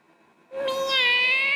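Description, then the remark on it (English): A single drawn-out meow from Little One, a cat, begins after a brief quiet moment and holds strong for about a second, bright and tonal, with no talking. “Yeah, it's me, it's Little One, the cat with the heart of a panther, and I have just been waiting and waiting and waiting to get back to y'all.”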